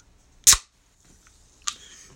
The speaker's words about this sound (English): So don't touch the table. So this is going to be our clap.